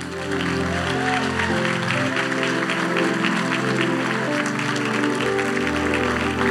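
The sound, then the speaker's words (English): A crowd applauds steadily to welcome a pastor coming up to preach, a dense wash of clapping mixed with sustained music chords playing loudly underneath, continuous for several seconds with no one speaking. “But without further ado, round of applause for my man, my brother,”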